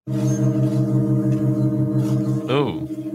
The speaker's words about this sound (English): Then a whole crowd of people get together and they put two more metal pipes on the organ so that now for the next few years it's going to make this sound.